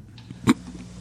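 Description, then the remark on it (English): A clock ticks: one crisp tick stands out, with fainter ticks around it at a slow, steady pace. No one speaks. “You can hear the clock ticking.”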